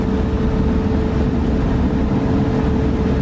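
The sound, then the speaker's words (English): An automatic car wash gantry drones steadily as it travels the length of a car and back during the drying stage, a loud, continuous mechanical rumble with a faint hum running through it and no break in the noise. “It'll go up and return back into the big mechanism of the car wash.”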